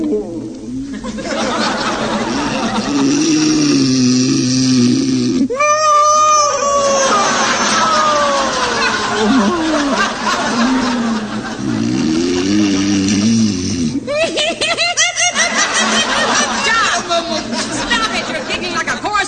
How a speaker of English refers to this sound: Mrs. Peavy just called again about your snoring. She's getting up a petition to have us thrown out of our apartment. What for? Because you're disturbing everybody's sleep.